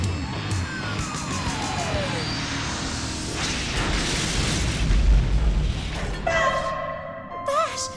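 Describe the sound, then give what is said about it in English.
A loud, rumbling spaceship crash effect as Bash Jordan crashes the ship swells into a heavy booming impact around the middle, with a descending whine early on and metallic tonal warbles near the end. No speech is evident. “But you've just crashed the ship!”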